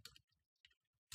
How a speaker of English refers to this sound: You're going to hear a lot more typing in this.